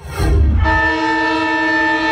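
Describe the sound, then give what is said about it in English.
A brief low rumble gives way to a loud stadium siren at Marvel Stadium, held as one steady, unwavering tone with a rich, buzzy edge until the end. Nobody speaks. “Siren number three.”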